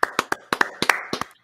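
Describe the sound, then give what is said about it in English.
Quick, sharp hand claps welcoming a guest, about eleven in a second and a half, in an uneven, slightly doubled rhythm, like one or two people clapping. Crisp and moderately loud, with no talking. “Ladies and gentlemen of Pats Nation, the Patriots outsider, get ready to clap,”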